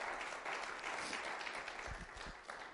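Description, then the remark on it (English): An audience claps hands together in praise of the Lord in a morning service, a dense, steady wash of applause, broad and bright, continuing at an even level with a few low thumps beneath and no talking. “If you believe that, give the Lord a hand clap of praise this morning.”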